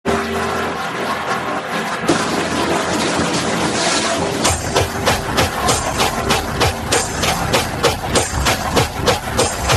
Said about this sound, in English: It sounds like someone slamming a door very fast. Yeah. Right? That's actually... I'll turn it off. That is... actually the medium energy version. There's a faster version of that as well.